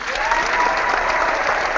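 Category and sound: crowd, applause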